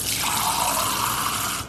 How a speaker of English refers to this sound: Let me carry you so you can hear the water. The dishwasher is currently going.